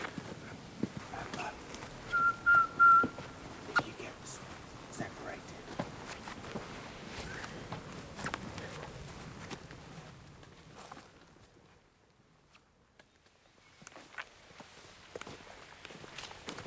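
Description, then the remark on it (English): Footsteps of several people walking in silence through the woods in the dark, crunching and scuffing at an irregular pace, fading to near silence briefly before resuming softly. A short high chirp sounds early on. “So we're going to walk in silence, in the dark, through the woods.”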